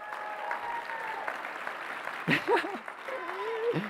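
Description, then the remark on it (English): An audience claps steadily for several seconds to praise God during a sermon, a dense sustained patter over soft held musical tones, with a voice calling out briefly near the end. “Someone want to clap and praise God, eh?”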